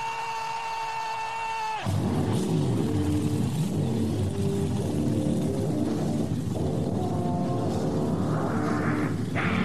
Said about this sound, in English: Race fans, it's time for those most famous words in motorsports. Driver, start your engine!